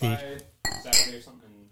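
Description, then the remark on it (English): Glasses clink together in a toast, two bright, sharp taps that ring briefly, with a bit of murmured voice just before them. “Cheers”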